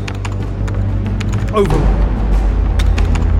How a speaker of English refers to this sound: Outer airlock door opening.